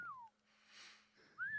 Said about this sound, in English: Is that … whistling?